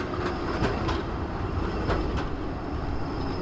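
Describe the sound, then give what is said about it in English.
A Prague tram rolls steadily along its rails with a low, continuous rumble, a thin high-pitched wheel squeal sustained above it, and occasional soft clacks from the track. No voices. “Riding the tram during the day versus after midnight are two very different experiences.”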